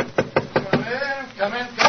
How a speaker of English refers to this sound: And now I'm sure our old friend Dr. Watson's expecting us. Let's tap on his study door.